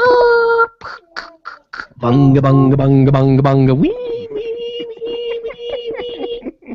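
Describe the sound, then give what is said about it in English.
A voice mimics a dial-up modem connecting: a held tone, then a fast run of rhythmic nonsense syllables over a low buzz, sliding up into a long, wavering high-pitched whine. “So the old ideas, if you look at these notebooks, they had phone line connections. They had a modem.”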